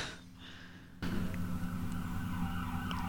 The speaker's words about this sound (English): There's just some sirens in case you can't hear that. I could hear them.